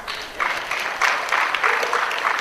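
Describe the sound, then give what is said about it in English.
An audience claps steadily for a couple of seconds, a dense patter of many hands at moderate volume, with faint voices mixed into the applause. “Yeah, you clap for that.”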